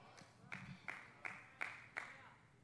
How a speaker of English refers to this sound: I appreciate that one hand clap on the front row.